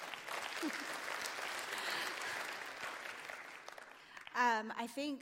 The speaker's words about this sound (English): Worship was amazing. That was like fire today, wasn't it? It was so good. Yeah, we can clap. We can do better than that, right?